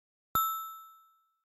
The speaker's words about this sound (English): The little bell sound that I used, let me play it again.